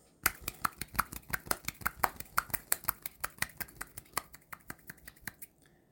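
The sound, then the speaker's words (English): A single hand clapping or snapping, about twenty crisp, sharp clicks in a quick, steady rhythm of roughly four per second, ending abruptly. No voices. “And now a short intermission, where we will focus on the other hand clapping.”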